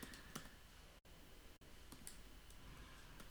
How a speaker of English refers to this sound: So now you start typing whatever you want.